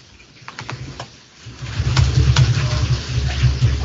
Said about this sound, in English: Somebody's washing the dishes. Somebody's got to wash them.